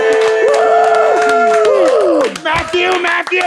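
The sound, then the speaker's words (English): A crowd applauds with sharp, scattered claps while loud, sustained cheering and shouting voices ride over the top, steady and energetic throughout. “Let's see a round of applause over here.”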